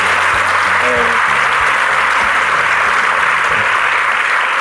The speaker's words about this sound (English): Very fun, and I'm very excited to have David Frum here with your book, Trumpocracy. How about a nice round of applause for David?